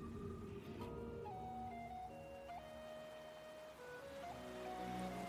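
A steady, rushing wash of ocean surf fills the background, with soft sustained musical tones drifting over it. No voices, just continuous water noise at an even level.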